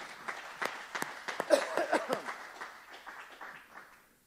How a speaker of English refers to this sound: Let's give the Lord a hand clap of praise right there.